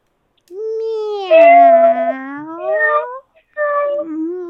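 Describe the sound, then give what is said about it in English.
A person imitates a cat's meow with drawn-out, wavering vocal cries that bend in pitch, a long meow followed by a brief pause and a shorter one, fairly loud with no other sounds. “Maybe if we meow like the cat, they'll come and join us, let us out of the cell, and then we can escape.”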